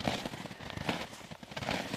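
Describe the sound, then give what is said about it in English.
Footsteps crunch through soft snow at a steady walking pace, each step a broad, grainy crunch with a fainter crackle of packed snow between them. “And there's icy snow and soft, crunchy snow.”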